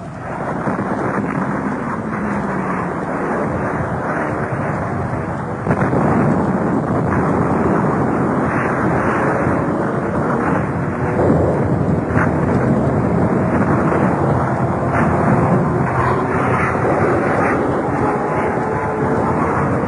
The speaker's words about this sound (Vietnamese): Trời tôi đen như mực, những ánh chớp nhấp nháy xanh lè liên tục trên những tiếng đạn nổ bom rơi.